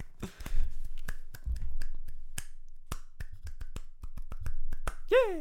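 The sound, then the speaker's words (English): Soft, sparse golf clapping for the game Super Smash Brothers Ultimate: a couple dozen light, crisp claps at an uneven pace, with no talking. A short descending whistle-like chirp closes it. “Let's give a bias golf clap to Smash.”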